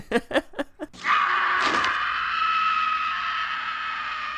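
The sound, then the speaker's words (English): A few quick panting gasps lead into a long, shrill, girlish scream that holds steady for several seconds, loud, with no talking over it; a scream from actor Mark Patton's film performance. “Right down to his girlish scream.”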